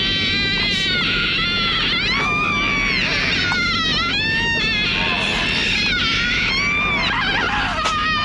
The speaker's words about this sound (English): And then, okay, this is 9 seconds long. It's shortened because it's so long. I didn't want to ruin everyone's day. But this movie wanted to have the longest moan scream that it could ever create in the world. And here it is.